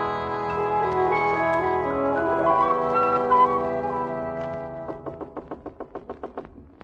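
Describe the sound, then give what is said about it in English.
Soft orchestral music plays, then a quick, evenly spaced run of about a dozen knocks on a door comes in near the end, crisp and fairly loud as the music fades beneath them. “I thought I'd better knock.”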